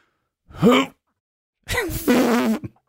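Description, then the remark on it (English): A voice imitates a funny, squeaky fart: a short, strained burst, then after a pause a longer, wobbling, high-pitched squeal, with no other talk. “The funny fart is the...”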